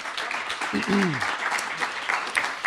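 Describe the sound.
A crowd applauds steadily, dense clapping filling the room at a moderate distance, with a brief voice or cheer rising through it near the start.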